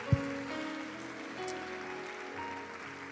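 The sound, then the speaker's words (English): An audience at a church worship service claps hands in a dense, steady patter like heavy rain, over sustained musical tones, with a low thump at the very start and no voices. “Put your Bibles down and clap your hands one more time if you thank God for his word.”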